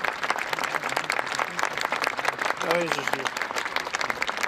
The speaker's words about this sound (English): Is it just me, or is it kind of weird when people like clap at you?